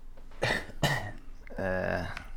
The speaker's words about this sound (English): The proprietor. Yeah, the proprietor turns and coughs.